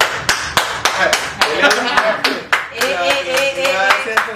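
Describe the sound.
A small group claps to celebrate something just getting started, a loose, uneven burst of sharp slaps for a few seconds, while voices talk and chatter over the latter half of the applause.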